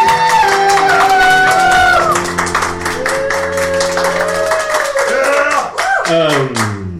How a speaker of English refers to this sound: The studio audience erupts in applause!